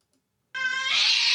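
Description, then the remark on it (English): An angry cat lets out a loud, harsh yowl that starts suddenly after a brief silence, first as a strained tonal wail, then breaking into a raspy, noisy screech that holds to the end. “It's an angry pussy.”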